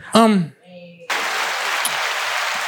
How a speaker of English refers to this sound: So the winner of Instagram Vixen of the Year is Brittany Renner. Brittany Renner. Round of applause.